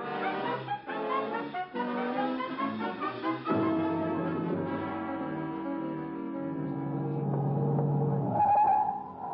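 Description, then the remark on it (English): A car races by with a roaring engine as it hurries to catch a train at its first stop, and its tires let out a sustained squeal near the end. The sound is loud, with no voices. “Look, get your car. We'll try and overkick... take the train at the first stop.”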